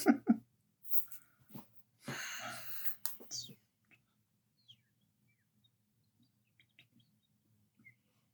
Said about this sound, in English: Is there like a gentle bird playing in someone's background right now? That was me.